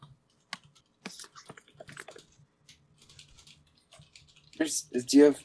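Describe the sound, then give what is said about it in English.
Soft, irregular clicking of fingers typing on a computer keyboard as someone rewrites an intro, quick bursts of keystrokes, followed by a person starting to speak at the end. “Yeah, I'm rewriting the intro for a moment.”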